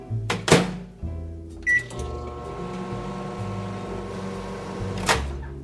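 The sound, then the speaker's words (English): A microwave door thuds shut and a short keypad beep sounds, then the oven runs with a steady electric hum, partially thawing a frozen English muffin, before a sharp click near the end. “So I am going to grab an English muffin from the freezer, give it a partial thaw in the microwave.”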